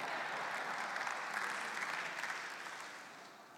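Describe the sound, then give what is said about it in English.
A church audience applauds together for God's word, a dense steady patter of many hands clapping at once that holds strong and then gradually tapers off toward the end. “If we can clap for In-N-Out, we can clap for God's word, right?”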